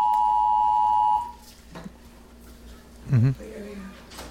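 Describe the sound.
A loud, steady emergency alert broadcast tone for a United States national emergency action notification holds for just over a second and then cuts off, leaving faint background noise and a brief voice-like burst.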